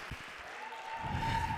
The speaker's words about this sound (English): It's a great day to celebrate the Lord. Oh, come on, if he's been good, won't you just clap your hands to the Lord who's strong and mighty?